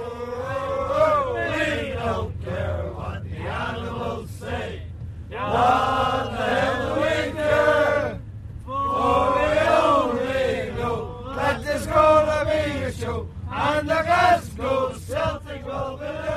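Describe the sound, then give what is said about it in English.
A large crowd of football supporters chants and sings their club's songs together in loud, sustained bursts, their massed voices rising and falling in rhythmic phrases with brief pauses between lines. “They're singing our songs, it's our flag that they're proud to fly, you know, and they're great boys.”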